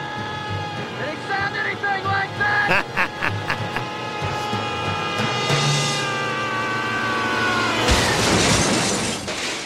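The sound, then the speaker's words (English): A man thrown off a roof lets out a long, high-pitched squealing scream, wavering for several seconds before a sudden loud crash of shattering glass and crumpling metal as he lands in a car cuts it off. “So he lands in a car. Died squealing like a pig.”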